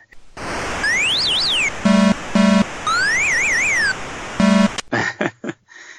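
Sound effects from one of the very first home video game consoles: a steady hiss of synthesized crowd cheering with warbling, rising-and-falling whistle tones, three short buzzy blips, and a final run of choppy noise bursts. No one speaks.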